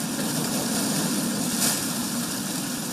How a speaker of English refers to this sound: The sounds of waves crashing on ice is an everyday wintertime occurrence along Lake Michigan, thanks to shelf ice.